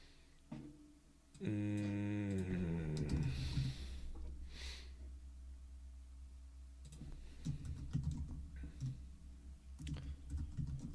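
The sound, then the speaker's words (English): Irregular clicking of keys on a computer keyboard as someone types a search on Amazon for the book The Widow's Son, running in bursts throughout, briefly interrupted early on by a drawn-out falling vocal groan. “Don't autocorrect me. I know what I'm typing.”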